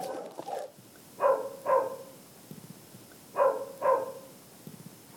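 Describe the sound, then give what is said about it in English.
Dogs bark across a valley, sounding off in two pairs of quick double barks separated by a short pause, with no one talking. “All across the valley, you can hear dogs barking, as if screaming out, run, get out while you can.”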